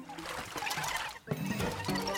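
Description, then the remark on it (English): Busy splashing and sloshing water as an ice Pikmin in a Pikmin video game thrashes about, drowning, continuous, with a brief dip in the middle before the churning resumes alongside a tonal hum. “Hurry, a Pikmin is drowning.”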